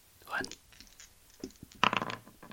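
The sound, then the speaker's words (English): A small six-sided die clatters and tumbles across a hard tabletop in several quick, bright bursts of clicking, with the loudest rattle near the end before it settles on a 4. “On the table in front of you is a 6-sided die.”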